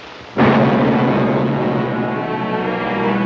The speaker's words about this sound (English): They spark. That's the lightning. They kiss. Thunder.